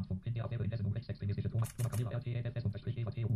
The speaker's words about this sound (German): Und überall da, wo es so klickt wie ein Fotoapparat, da ist ein Bild mit dabei.